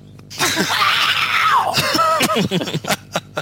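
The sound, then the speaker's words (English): A loud, raspy scream from voices imitating a singer carries on for about two seconds, its pitch sliding downward, then breaks into short choppy vocal bursts like snickering. “Well, I was going to hand it over to someone else, but since you guys started screaming”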